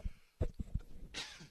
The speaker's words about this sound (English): Oh, my word. I'm hoping not to sneeze.